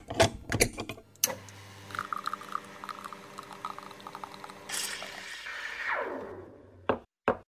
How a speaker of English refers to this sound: And now, let's start up the espresso machine and brew up another Leadership Espresso Shot.